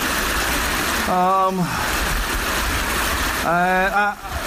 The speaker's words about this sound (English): That's why I'm stood by brook / aggressive stream.